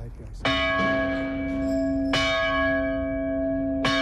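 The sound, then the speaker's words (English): A medieval bronze church bell, in a lone tower on the roof of Smock Alley in an Irish city, strikes three times at a slow, even pace, each clang ringing out with a rich, lingering hum that carries into the next stroke. Clear, with no voices. “in the rubble of that church was a medieval bronze bell”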